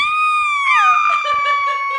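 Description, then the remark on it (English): A woman riding in a motorcycle sidecar lets out a loud, sustained high-pitched scream lasting about two seconds, her voice wavering and dipping in pitch partway through, with no talking around it. “And her scream when the sidecar...”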